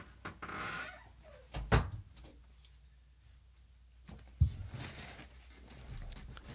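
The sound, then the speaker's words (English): A door is opened to let a dog out to go to the bathroom, with a sharp clack of the latch, then a second solid thump a few seconds later as it shuts, amid faint shuffling and rustling. “I had to let Max out. He had to go to the bathroom.”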